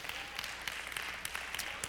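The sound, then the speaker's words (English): Scattered, thin applause from an audience during a sermon, a soft patter of hand claps with a few sharper claps standing out, with reverberation. “Oh, that's a weak applause right there.”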